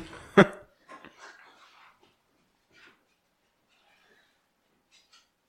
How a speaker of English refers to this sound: Sorry about that snorting in the background. It's my dog. He's got a really smushed face and I think he's looking for food or something. I don't know. He's sniffing the ground.